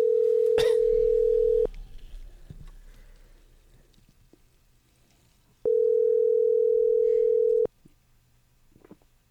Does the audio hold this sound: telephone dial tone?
yes